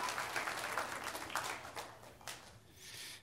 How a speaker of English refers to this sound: Give the Lord a great big clap for him.